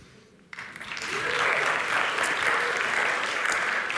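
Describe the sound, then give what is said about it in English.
After a brief hush, an audience bursts into applause, quickly building to a steady, dense patter of many hands clapping that holds loud and even to the end. “They never clap for me,”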